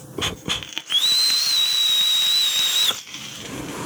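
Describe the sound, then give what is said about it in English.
A loud, piercing high-pitched whistle from air drawn through airflow holes set dead center over a small coil holds steady for about two seconds over a breathy hiss of rushing air, with brief chirps of the tone before it settles in. “you have to angle the airflow holes not direct, slightly off center, because otherwise the whistle is ungodly loud.”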